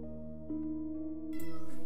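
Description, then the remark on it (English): A cat meows in one long, drawn-out wail that rises and grows louder toward the end, clear with no talking over it. “Shut up, cat.”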